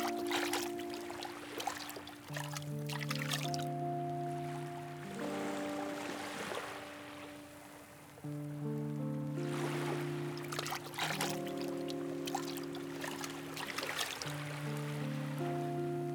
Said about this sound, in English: You walk to the edge of it and splash your hand in the warm water.